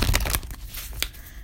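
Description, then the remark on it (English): Cards from an annual oracle deck being shuffled: a quick burst of papery riffling and crinkling at the start, then softer scattered rustles and one brief sharp flick, with no talking. “So we're going to be shuffling. This is the annual oracle deck.”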